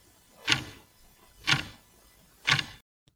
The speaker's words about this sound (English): And all you can hear is a big clock ticking on the wall.